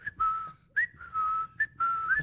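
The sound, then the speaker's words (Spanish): A person whistles a birdlike call: a few short rising chirps alternating with longer steady notes at a bright, high pitch, repeated in an uneven pattern with no speech. “por ejemplo, cuando un pajarito se posaba en el árbol y hacía un sonido especial, decía que alguien va a morir.”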